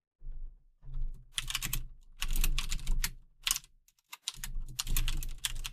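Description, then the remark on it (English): Steady typing on a computer keyboard, with quick bursts of key clicks in uneven clusters and short pauses between them. No one speaks. “I heard you typing.”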